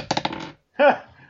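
Dice are rolled for initiative, clattering across a table in a quick burst of four or five sharp, rattling taps, followed after a brief pause by a short spoken exclamation.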